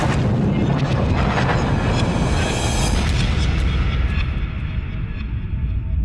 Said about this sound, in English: Oh, the Big Bang. We heard that this morning.